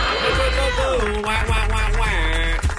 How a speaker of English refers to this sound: Thank you. Thank you for that air horn.